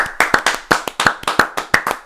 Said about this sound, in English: Let's give a round of applause to Aluakin.